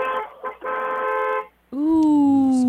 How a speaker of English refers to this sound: Ooh. That's a cute. I like it. That was a cute horn. Okay, we can agree. Not a truck, right? Not a truck.